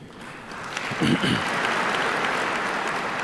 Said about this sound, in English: I'd be applauding too. That sure sounded like a winner to me.